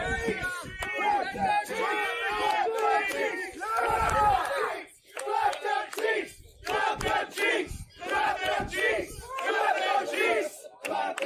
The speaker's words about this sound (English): They just stood at the gates and they screamed that they wanted to have sex with aliens and slap their ass cheeks when they were having sex with them.